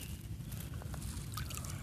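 Gentle water laps and sloshes around a kayak out on the water while paddling and fishing, soft liquid drips and trickles over a steady low rumble, quiet and continuous with no voices.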